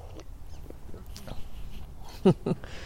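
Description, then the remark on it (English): In the morning, dogs pass by outdoors, sniffing at a recycling bin, with two short, sharp yips close together near the end, rising above a faint, steady background rumble. “Go some doggies by.”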